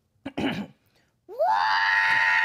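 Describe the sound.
A voice imitates an agonized scream: a short strained groan, then a loud, rising, sustained shriek held for over a second, intense, with no talking.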